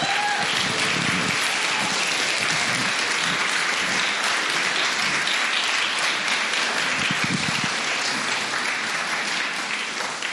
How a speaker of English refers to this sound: Give a rowdy round of applause